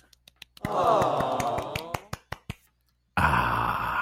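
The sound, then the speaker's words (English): A slow, sparse golf clap: a dozen or so light, crisp claps spaced unevenly over a drawn-out vocal murmur, then a loud, dense burst of sound cuts in abruptly near the end. “Just for that, we'll give him a golf clap.”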